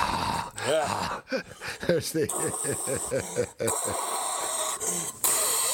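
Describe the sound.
A voice does a Darth Vader impression, heavy masked breathing into a phone: raspy, hissing breaths with low groaning tones, repeated in a steady rhythm, loud with a muffled, phone-like quality.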